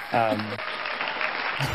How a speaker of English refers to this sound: Insert applause here.